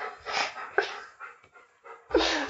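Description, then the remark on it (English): A female dog sitting in a doorway pants heavily and rhythmically, quick breathy bursts repeating over a couple of seconds with a brief whimpery catch near the end. “Oh, she's now sat down, so she's just going to heavy pant in the doorway.”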